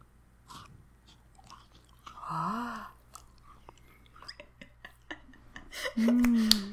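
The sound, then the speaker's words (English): Crunching and chewing of a chocolate cookie: a string of crisp, crackly bites and munches, broken by a couple of voiced hums from the eater. “Can you give us a crunch?”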